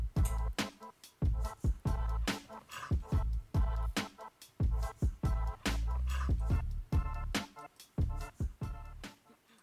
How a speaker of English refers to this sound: Yeah, and then I couldn't quite hear it through the Discord, but the like snarl continues throughout. It's pretty cool. It's a percussive shark dog snarl. A percussive shark dog snarl.